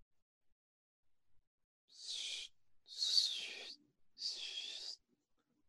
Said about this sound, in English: It's ripping paper. Oh. Ripping a sheet of paper. I expect ripping to be a little more oomphy. It's pretty sharp over here. It might not be as sharp in that audio. Mm, not as sharp.